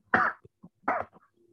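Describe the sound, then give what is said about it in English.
Two sharp, muffled coughs into an elbow, about a second apart, each followed by a brief throaty rasp, with no talking around them. “Sorry for the sneeze, I coughed in my elbow.”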